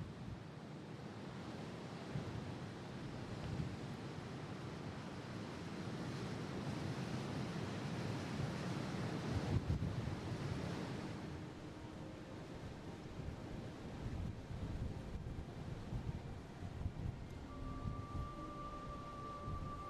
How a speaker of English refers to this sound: Anyway, here's a track in the middle of the Saddle with the ocean either side and very strong winds blowing between this narrow gap.